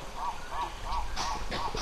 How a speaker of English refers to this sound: And it's not like the Chinko lacks any animals. The riverbanks are buzzing with monkeys and birds.